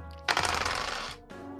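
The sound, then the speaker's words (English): Dice clatter and tumble across a hard tabletop in a busy rattle lasting about a second, then a brief pause and another softer stretch of rattling, as a 1d100 roll is made. “Yeah, you open it up and there's roll 1d100.”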